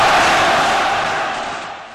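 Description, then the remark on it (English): A stadium crowd roars and cheers for the Scotland team, wanting a lap of honour, in a dense, continuous wash of voices, loud at first and slowly fading over two seconds, with no single voice standing out. “And the crowd want a lap of honour for Scotland.”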